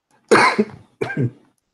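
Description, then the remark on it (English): Two harsh coughs about a second apart during a coughing attack, each trailing into a rough, throat-clearing rasp, with quiet silence around them and no talking. “I had a coughing attack right before I started the answer.”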